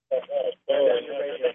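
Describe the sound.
A narrow, tinny phone line carries smeared, overlapping voice sound that piles up on itself like a delayed echo looping back, in two bursts separated by a brief silence: a caller's radio feeds the broadcast back through the phone into an infinite delay loop.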